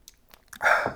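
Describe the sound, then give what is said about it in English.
Someone drinking water: a few faint small clicks, then a single louder gulp followed by a brief breathy exhale. No one speaks. “One second as I get a drink of water.”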